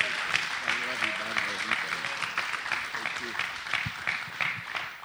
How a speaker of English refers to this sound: hand clap as he comes forward to minister to us.